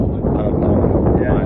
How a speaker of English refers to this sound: It's just so windy. And I was like covering the microphone with my hand a little bit so the wind wouldn't hit it.